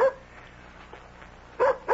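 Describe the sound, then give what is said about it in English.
A dog at the door barks in short, sharp bursts: one bark right at the start, then a quiet pause before two quick barks close together at the end, clear. “That's Nikki at the door with my dog.”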